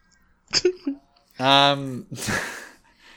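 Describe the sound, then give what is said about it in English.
A couple of quick breaths, then a loud, drawn-out voiced yawn, a sustained groaning tone that trails off into a breathy exhale, with no other speech. “Yawn!”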